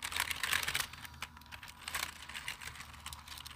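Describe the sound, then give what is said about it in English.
Rapid clicking of computer keyboard keys being pressed, a dense run of crisp taps with brief bursts, fairly quiet and with no voices. “You know what, actually, I have actually watched ASMR videos of people just playing with keyboards. Hang on, the keyboard's right under you.”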